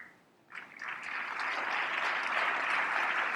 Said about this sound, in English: Mixed applause there. You see that?